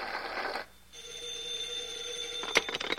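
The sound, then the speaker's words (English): A telephone bell rings in a bright, rattling burst, breaks off, then a steady tone hums before the phone is briefly jostled near the end; fairly loud, no voices. “I'll get the phone.”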